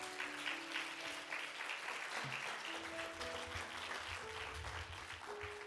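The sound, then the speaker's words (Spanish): A church audience at Iglesia Café applauds God after a prayer, a dense, steady wash of clapping with sustained tones from an organ or keyboard underneath, ending in a sudden loud burst at the very end. “Denle un aplauso a Dios.”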